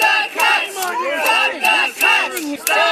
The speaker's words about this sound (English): Mr. Lecce is in a car. All ministers get government cars. That's how it works here in this province. And as the car pulls away from the event, these are teachers and union members crowding around the vehicle and chanting at Stephen Lecce.